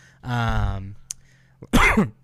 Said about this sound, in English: Excuse me, I coughed right into the mic. I am not sick with corona, thank you everyone.